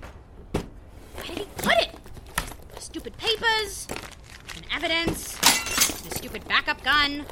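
Mr. Steele's statue breaks with several sharp cracks and crunching, clinking debris scattered over about seven seconds, mixed with bursts of high-pitched vocal sounds.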